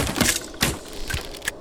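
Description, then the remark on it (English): Crossbows of hard yew wood with strong twine strings twang and bolts thwack in a quick series of about four sharp, woody snaps and cracks, each a bright percussive hit with a brief rattle after it, in a fight just before Easter in 1199. No voices. “The thwack and twang of strong twine snapping forward.”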